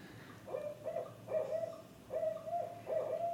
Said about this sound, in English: Okay, that's the barred owl. I feel that. The barn owl? No, barred. Oh, the barred owl. Or bared. That's right. Yeah, no, that's a barred owl, right. Barred owl.